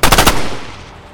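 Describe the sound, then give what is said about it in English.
A rapid burst of about four loud, sharp carbine shots fired at a man's chest in quick succession, followed by a fading rumble that trails off. No voices are heard. “The next blast struck him squarely in the chest, lifting him off his feet.”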